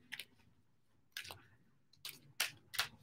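A deck of tarot cards being shuffled for a Virgo reading: a few soft, papery swishes and flutters in irregular bursts, fairly quiet, with no one talking.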